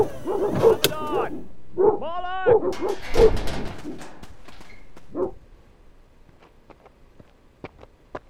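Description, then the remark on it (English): Dogs bark loudly and fiercely in a rapid, overlapping burst for about five seconds, mixed with snarls and whines, then the noise drops away to faint scattered clicks. “Are those your dogs? I'm terribly sorry. They ran off before I could stop them.”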